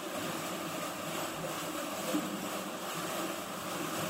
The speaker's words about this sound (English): We have a machine called a flue that simulates an open channel, like a river. When you press the button to start the pump, it's quite steady. At the very same time, you have the sound of water flowing down as well.